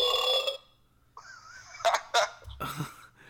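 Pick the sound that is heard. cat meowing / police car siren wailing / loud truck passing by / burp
burp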